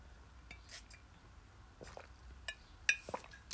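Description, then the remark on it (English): Someone drinks water from a glass: soft handling rustles, then a few sharp, bright glass clinks near the end, all fairly quiet, with no talking. “Ugh, I need another drink of water.”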